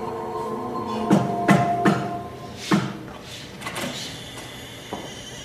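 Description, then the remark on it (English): The basement door of an empty warehouse is pulled open with a low creak, followed by a series of wooden clunks and knocks spaced unevenly over several seconds, moderately loud. “I followed the address I'd been given and made my way to an empty warehouse with a basement door.”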